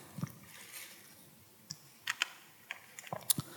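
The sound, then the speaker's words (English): Many Bible pages turning across an audience as people look up Zechariah chapter 9, heard as scattered soft, crisp rustles and flicks, irregular and fairly quiet, with no talking. “I'd love to hear those pages turn.”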